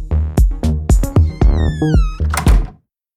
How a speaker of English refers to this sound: All of the high frequencies are bouncing around inside their space, but the bass frequencies pass right through the walls and into your ears. When your neighbor opens the door for pizza delivery, all those high frequencies can escape.